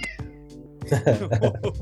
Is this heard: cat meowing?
yes